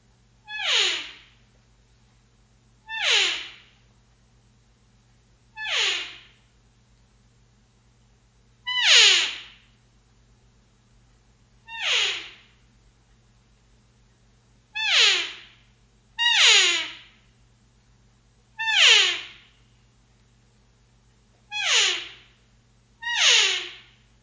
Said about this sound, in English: I want to demonstrate for you an elk call